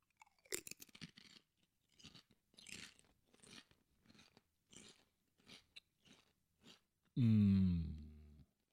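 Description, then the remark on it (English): Crunching and chewing of a crisp: a big, heavy, loud opening bite, then a steady series of crackly chews, followed by a sudden loud, sustained vocal groan at the end. “That was a big heavy crunch.”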